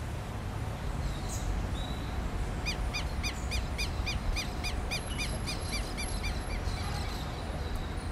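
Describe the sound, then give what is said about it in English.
A rapid series of bright, repeated bird calls rings out among the buildings of São Paulo, Brazil, over a steady wash of urban background noise, the calls clear, pulsing in a quick regular rhythm for several seconds. “It may be a sprawling and industrial city, but wherever you are in São Paulo, Brazil, you can't escape the sound of birds.”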